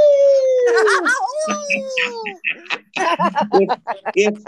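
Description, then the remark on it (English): A person lets out a long, wolf-like howl that slowly slides downward in pitch for a couple of seconds, followed by quick, animated talking. “Oh, you just make me want to howl like a wolf.”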